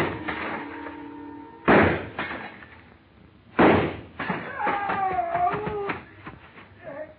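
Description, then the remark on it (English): Two sharp, loud gunshots ring out a couple of seconds apart, fired at a glass showcase in a store, followed by clattering and a wavering tonal whine, with no one speaking. “And it didn't take me long to decide to give him a better view of the inside of that glass showcase. I started deliberately shooting his foothold out from under him.”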